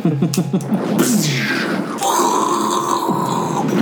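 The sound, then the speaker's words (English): A voice imitates a dragon roar: a loud, gravelly growl that swells and shifts pitch, then breaks into a second, higher rasping bellow sustained for several seconds. “And you hear the dragon roar.”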